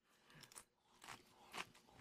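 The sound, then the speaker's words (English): Crisp crunching of someone chewing a powdery Guinness marshmallow, with several sharp bites and brittle crackles in quick succession and no talking. “Why is this so crunchy?”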